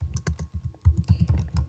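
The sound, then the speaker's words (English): Rapid typing on a laptop keyboard, picked up by the laptop's built-in mic: a steady run of crisp key clicks with a few heavier thumps, heard alone with no talking. “Whoa, someone's typing.”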